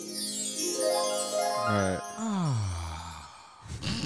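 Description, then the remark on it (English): A magical fairy-dust twinkle: shimmering, bell-like tinkles over rising and falling tonal glides for a few seconds, ending with a short breathy burst. “Please give me the fairy dust. Oh, the fairy dust.”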